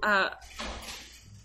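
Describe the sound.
A door rattles and clatters nearby for about a second, a loose, noisy shaking that follows a brief moment of someone's voice at the start.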